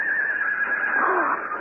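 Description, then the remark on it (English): A young horse, the colt Juniper, tied to a tree, whinnies in one sustained, steady high-pitched call lasting well over a second, with a wavering, quavering tone that dips slightly before fading out. “I know that sound. It's our little code. And look, there he is. Tied to that tree over there.”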